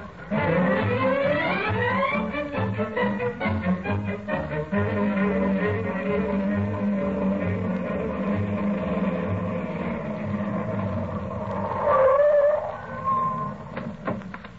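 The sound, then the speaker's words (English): A car engine drones steadily as the car is driven to a hospital, its pitch climbing at the start before settling into a throbbing low rumble that continues loud throughout, with no voices. “I'll leave the car right here by the ambulance entrance”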